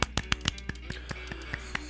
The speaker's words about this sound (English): Golf clap.